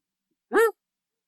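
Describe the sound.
A single short, sharp bark made by a human voice imitating a dog, clear, standing alone in otherwise silent surroundings.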